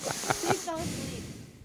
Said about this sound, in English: You like breathing right into that mic, huh? You're just like... I'm like, why am I hearing breathing constantly? I forgot it was sitting right under my nose.